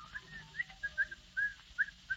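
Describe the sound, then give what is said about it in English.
A man coming down the stairs whistles a bright, bouncy tune, a string of short rising and falling notes in a quick, cheerful rhythm, clear with no talking. “Down the stairs comes the happily demented Mr. Van Dyke, whistling cheerfully.”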